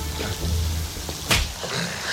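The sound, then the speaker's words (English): A single sharp, loud slap lands about midway through, a crisp smack standing out against a low, steady background rumble with no talking; in a scene, Jane slaps Thor. “Really, when you see Thor, you're going to go and slap a god?”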